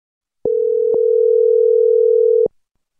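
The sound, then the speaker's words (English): A loud, steady telephone dial tone as a call is placed to a caller for the show LOL, humming alone for about two seconds, with a soft click at the start, another shortly after, and one as it cuts off. “All right, let me get her on the phone.”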